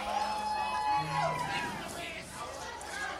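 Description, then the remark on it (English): An audience at a live show with a band cheers and shouts in a steady, noisy wash of voices, with whoops and scattered yells blending into a loud hubbub that holds for a few seconds. “make some noise. Alright, alright. Oh, you guys are a good crowd, man.”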